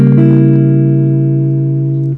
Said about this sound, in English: A lot of beginning guitar players don't actually know what to do with the chord in example 1A. A C sharp diminished seventh.